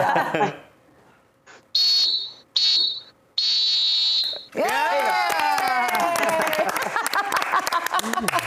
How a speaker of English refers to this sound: Hold up. World Cup final whistle.